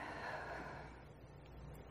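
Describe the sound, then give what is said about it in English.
A deep breath in and out, a soft airy rush that swells briefly and then trails away into quiet. No one speaks. “And I invite you to take a deep breath in and out. And in and out.”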